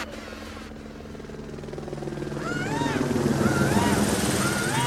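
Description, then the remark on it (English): A police helicopter's steady rotor drone builds in loudness as it passes overhead, its deep thrumming hum joined midway by rising and falling whooping tones. “Motherfuck you and your punk ass ghetto bird.”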